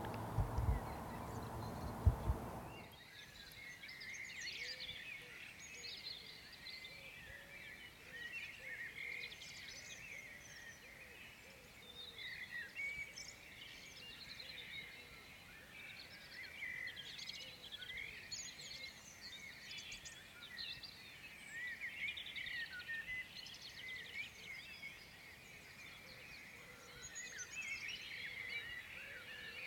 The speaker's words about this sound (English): Those birds are perfect, aren't they? And I would like to wake up like that every morning.